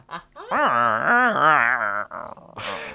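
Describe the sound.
A person imitates a little dog's growl, a wavering voiced rumble lasting over a second, trailing off into a short breathy huff.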